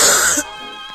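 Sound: cough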